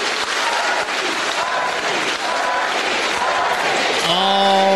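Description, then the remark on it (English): A crowd gathering outside an apartment window, murmuring and chattering, many overlapping voices forming a loud, steady din. Near the end a sustained pitched tone, like a horn, cuts in over the noise. “In fact, there's actually a crowd gathering right now outside of my apartment window.”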